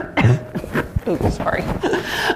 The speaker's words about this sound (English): I'll cough this way.